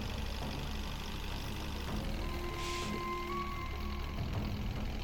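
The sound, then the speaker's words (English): A jeep engine in a video game runs steadily as the jeep slowly progresses through a course inside a temple, a continuous low rumble with faint tonal whines drifting over it, holding constant loudness throughout with no talking. “While a Jeep is slowly progressing through the course inside this temple, which is like really good.”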